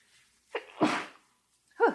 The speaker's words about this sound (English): Oh, I feel like I'm going to sneeze, you guys. Hold on. Excuse me.